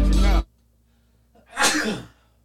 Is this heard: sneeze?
yes